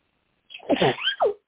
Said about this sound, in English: I'm going to sneeze, you guys.